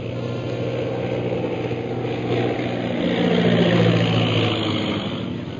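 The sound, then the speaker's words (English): A single airplane flies right toward the listeners, its engine droning low overhead, a steady throbbing rumble that swells louder near the middle and then eases slightly, with no voices. “Most High Superior, here comes one plane right at us.”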